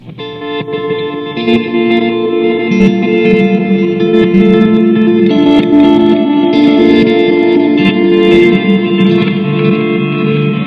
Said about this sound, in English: I mean, like, when you have pedals that work really well together, like I think the Ecosystem and the Reverb work super cool together, you can do you can get really cool combos. So this is reverse reverb and reverse delay.